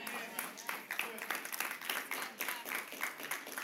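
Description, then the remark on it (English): Polite golf clapping from a crowd: a soft patter of many hands clapping unevenly at moderate volume, with a faint murmur of voices mixed in. “Why y'all golf clapping me today?”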